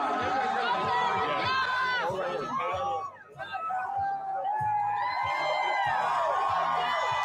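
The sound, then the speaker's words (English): A dense crowd at the Alpha Gamma Rho fraternity house chatters and cheers loudly as Donald Trump shows up on Saturday, with overlapping excited voices and whoops, briefly dipping before swelling again into sustained noisy cheering. “So, all right, another video of Donald Trump showing up at the Alpha Gamma Rho fraternity for I can't even talk fraternity house on Saturday. Look at that crowd.”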